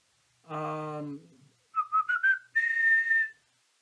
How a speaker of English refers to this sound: I probably should have whistled. I'm sorry. That really just fucked y'all up for whistling.